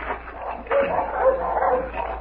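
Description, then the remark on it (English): Dogs at a farmhouse with a barn bark and yip in a steady, overlapping stream, fairly loud, with short whimpering tones mixed in and no talking. “Dogs. Oh, they sound like the side of that tree in front of the house.”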